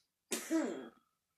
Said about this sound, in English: You coughing to death?